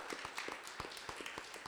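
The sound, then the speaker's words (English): A church audience claps together in praise to the Lord in a quick, steady rhythm, many hands blending into a dense, lively patter with sharper individual claps standing out. “Someone give the Lord a hand clap of praise.”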